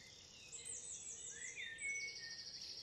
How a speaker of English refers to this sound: Okay, it's dawn and we've just come out to hear the bird song starting.